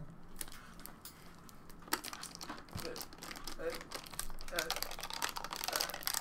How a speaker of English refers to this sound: For the audience at home, he's chewing on a water bottle. That's full. Full of water. It's not even open